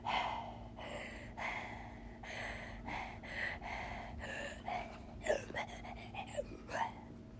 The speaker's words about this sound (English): … panting was kind of scary, but it wasn't enough for me.